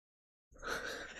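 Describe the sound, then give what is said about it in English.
A yawn starts abruptly after a moment of silence, a breathy, open-mouthed exhale with a faint voiced tone that holds steady, with no talking. “I caught that yawn too, just so you guys know.”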